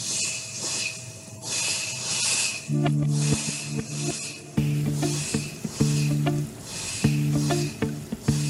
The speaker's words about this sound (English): The disturbance sounds are always present in our first prototypes of showers and faucets. So the challenge lies in the filtering out of these sounds without changing the function or the design of the product.